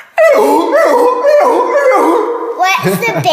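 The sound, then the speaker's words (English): A voice imitates a seal with loud, wavering, high-pitched barking calls that rise and fall in pitch for about three seconds, ending in a rougher, choppier stretch. “Do you want to hear my seal noise?”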